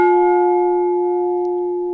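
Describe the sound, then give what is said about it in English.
A single bell strike rings out on its own, a steady mid-pitched tone with bright overtones that hums and slowly fades across two seconds. “But yeah, I think it's important that we do get some sort of bell here.”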